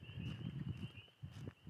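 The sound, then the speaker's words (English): A couple of soft, muffled steps squelch on a wet path in the countryside by a stream, low, with a steady high whine of frogs droning in the background. “My feet squishing.”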